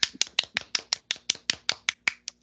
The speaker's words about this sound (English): We call that a round of applause.